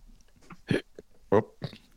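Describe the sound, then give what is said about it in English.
A few sharp, abrupt hiccups sound, each a short voiced jolt, separated by brief pauses with faint breathing and mouth noise between them and no talking. “Where did that hiccup come from?”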